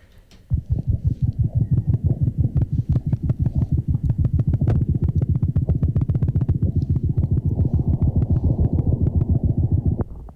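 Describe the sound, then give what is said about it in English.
A rapid heartbeat of a lapwing, picked up by an artificial egg in its nest as a person approaches and the bird grows alarmed: dense low thumps pulsing quickly and evenly, loud and continuous with a faint hum beneath, and no voices. “This is an artificial egg which is in a nest recording the heartbeat or the state of physiology of this lapwing.”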